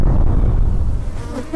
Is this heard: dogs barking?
no